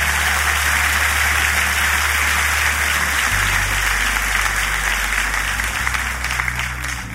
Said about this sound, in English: Are you excited about this season of faith? Come on, clap your hands if you're excited.